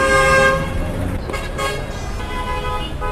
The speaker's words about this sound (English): Before they were banned, commercial motorcycles like this one were quite popular.